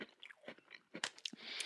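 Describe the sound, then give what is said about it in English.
Chewing of crunchy Kroger Kaleidos store-brand sandwich cookies, with several sharp crunchy bites and wet mouth sounds in an uneven rhythm, loud, with no talking. “You think these are Oreo brand? They don't sound as crunchy in your mouth.”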